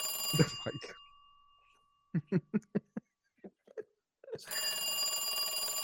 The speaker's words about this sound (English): Thank you for playing the terrible phone ringing noise, Scoots. Appreciate that.